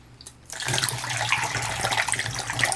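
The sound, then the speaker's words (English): After a brief quiet start, film developer is poured out of a developing tank at the end of a roughly three-minute development, in a steady, splashing stream that continues to the end, with no voices. “I pour out around 10 second mark.”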